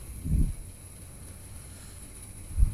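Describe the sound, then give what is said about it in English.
A soft, steady wash of rain and storm noise, with low rumbling swells near the start and again at the end; no one speaks. “Let's just sit here and listen to the rain. Listen to the storm.”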